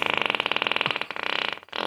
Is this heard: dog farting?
yes